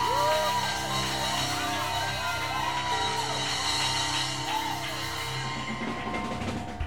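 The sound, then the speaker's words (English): A loud church audience shouts and whoops together in praise of God, a sustained, excited roar with rising yells over a dense wash of voices, fading slightly near the end. “Give the Lord a shout, a clap, a jump, a dance, something.”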